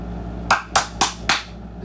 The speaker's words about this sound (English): I'm clapping at my own stupid jokes.